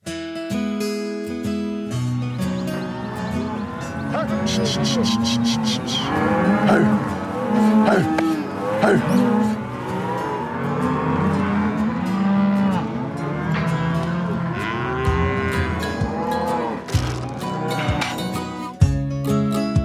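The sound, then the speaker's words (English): Cattle moo over and over in a crowded pen where cowboys have been working them since dawn, many low, drawn-out calls overlapping each other, loud, with a steady murmur of livestock noise beneath. “They've been out there since dawn working cattle.”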